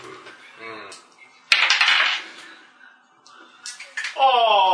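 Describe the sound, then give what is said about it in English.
Dice clatter across a table for a reflex save in a tabletop role-playing game, a quick, loud burst of rattling clicks lasting about a second, with people talking before and after. “Lower than my dice roll, though.”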